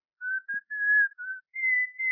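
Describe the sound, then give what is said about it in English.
A man whistles into a telephone, a short run of clear, steady notes, about six held tones rising slightly toward the end, fairly soft and alone with no talking. “Will you stand back to your phone about 5 minutes? Huh? Oh, sure. I am. Thank you. Now, whistle.”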